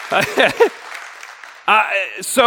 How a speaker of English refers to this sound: Okay, we got two people clapping. We're not going to just leave them out there. So let's all, because we're not clapping. We're clapping, okay.